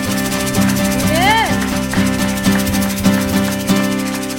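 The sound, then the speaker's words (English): A church audience claps in praise of the Lord in steady unison, roughly two claps per second, over sustained music with a voice gliding up in pitch near the start. “Let's give the Lord another clap of praise.”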